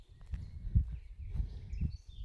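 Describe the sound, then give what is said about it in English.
Faint, scattered bird chirps and short high tweets drift over a steady low rumble, with a few soft thuds underneath, outdoors where someone is out running. No one speaks. “Birds are going tweet mad here.”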